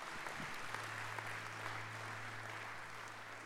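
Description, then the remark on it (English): An audience claps together in a steady, dense wash of applause that holds for several seconds, with a low constant hum running underneath and no voices. “My question is, yeah, come on, give him a clap.”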